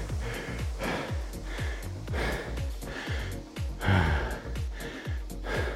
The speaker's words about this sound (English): This is definitely gonna be one of these heavy breathing rest periods, because I need to catch my breath properly here so I can talk to you in the main effort.